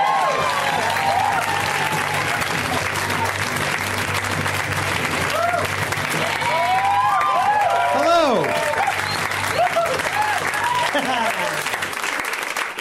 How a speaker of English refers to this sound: So please, a round of applause for the amazing, the legendary Mr. Paul F. Tompkins.